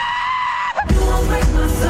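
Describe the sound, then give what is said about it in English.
A crowd of fans at a concert screams in loud approval, a sustained high-pitched roar that swells suddenly after a brief sung note and stays intense. “Fans scream in approval, and the fan goes completely bananas.”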